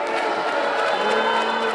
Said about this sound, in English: They're booing board member Shannon Rodriguez. She joined the Hernando School Board last year, backed by Moms for Liberty.